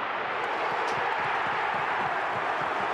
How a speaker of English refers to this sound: Oh, how's the roar, the crowd? It would have been an amazing atmosphere, those big finals games, including the grand final.